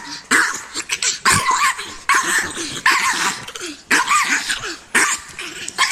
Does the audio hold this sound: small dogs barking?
yes